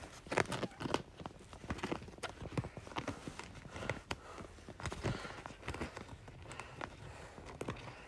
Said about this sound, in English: I have to figure out how to close this bag. Alright, so now I'm trying to close this bag, but I don't want to break the zipper because I like this bag, and it's like, yeah.